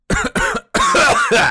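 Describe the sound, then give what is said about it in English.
Someone clears their throat: two short, harsh bursts followed by a longer, rougher rasp, loud and with no talking. “Gotta clear my throat.”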